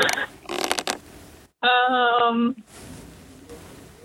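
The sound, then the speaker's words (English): A wooden rocking chair creaks: a few scratchy creaks, then one loud, drawn-out groaning creak about a second long, followed by a fainter creak as it rocks back. “Is it a rocking chair?”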